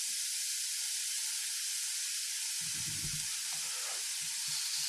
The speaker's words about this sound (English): But now we are turning on the grill.